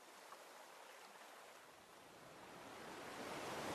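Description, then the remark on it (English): Clear water rushes and tumbles over hundreds of smooth rocks and a few small boulders in a creek beneath a bridge, cascading slowly down a hill in a steady, hissing wash, fairly soft and continuous, swelling slightly louder toward the end. No voices are heard. “The relaxing sound of the water tumbling over the rocks gives you a sense of calm.”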